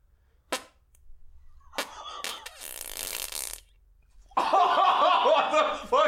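A few short sharp pops lead into a buzzing, sputtering fart lasting about a second, then loud bursts of laughter take over until the end.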